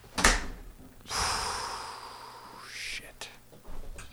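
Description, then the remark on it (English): A sharp clack, then a long airy whoosh like a door swinging open and shut, followed by a couple of softer thumps, moderately loud. “Fucking doors.”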